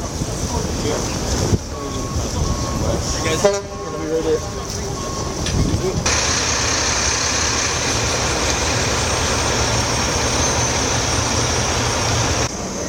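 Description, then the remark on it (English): Tow trucks idle and rumble loudly in a played video, a steady, dense engine roar mixed with gusting wind noise across the microphone, growing fuller and harsher partway through and holding steady to the end. “Well, here's the tow truck drivers.”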